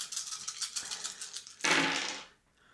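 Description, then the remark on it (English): Dice rattle with quick, clicky shakes for over a second, then tumble out in a louder scattering clatter that fades away. No talking. “Do you think I should add another pull dice?”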